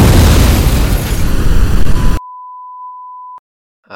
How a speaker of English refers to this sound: I think that was clearly an explosion. Are they allowed to do that?